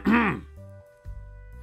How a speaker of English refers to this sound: He will approach the desk and try to appear professional. Clear his throat.